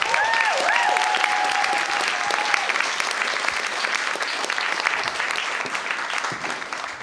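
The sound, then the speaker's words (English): Sustained audience applause at a Story Slam storytelling event, dense and steady clapping from a crowd lasting several seconds, with a brief high whistle or whoop near the start before fading slightly toward the end. “Big round applause, please,”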